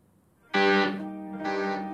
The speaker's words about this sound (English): That's the first G minor. We've got a sort of keyboard and high bell sound.